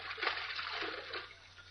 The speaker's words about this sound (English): Hey, listen, what are you jumping in the water for, Mr. Kent?